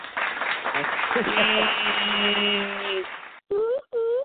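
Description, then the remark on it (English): A burst of dense, crackling clapping like applause, played on a call-in show to send off a caller, runs for about three seconds, with a voice talking over part of it; after a short pause, two brief spoken bursts follow. “I'm going to just put you on mute, but I'm going to take you out with a clap, though.”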